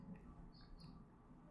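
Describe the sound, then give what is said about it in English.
Faint birds chirp outdoors at a bird feeder, with a couple of short high-pitched calls drifting over a steady low background rumble. No one speaks. “We got a new bird feeder situation out there.”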